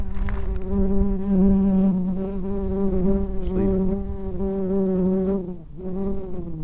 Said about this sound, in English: Well, we've got a bee trying to fuck our microphone at the moment. It's a little cutie. Have you had enough, BB? Off your pop. Nope, he's back.